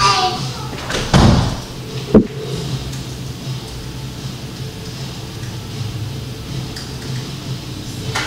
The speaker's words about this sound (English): Close the door.